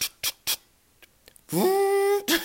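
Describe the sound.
A voice imitates a printer churning out a document: several short, hissy mouth bursts in an uneven rhythm, then a sustained, buzzy mid-pitched whine that rises slightly and holds, ending with one more hiss.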